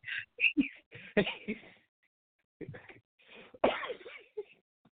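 A person coughs and clears their throat in a rapid cluster of harsh bursts, then pauses and coughs a few more times, fairly loud, with no speech.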